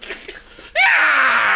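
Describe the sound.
After a brief quiet stretch, a person bursts into a loud, strained, high-pitched scream that rises then holds raw and shrill to the end, yowling like a dying cat.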